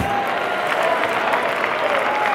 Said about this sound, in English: Well, let's all clap our hands and give him praise.